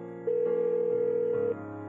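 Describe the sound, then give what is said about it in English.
A single steady telephone ringing tone of a call placed by a Seattle restaurant owner to the Philippines sounds for just over a second, clear and fairly loud, over a soft sustained musical backdrop. “armed with a few important clues, he made the call that would change lives.”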